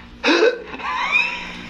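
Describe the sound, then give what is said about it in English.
A voice makes an imitated gasp: a sudden short vocal catch, then a longer airy, rising intake of breath lasting about a second, fairly loud, with no words spoken. “And then you kind of gasp.”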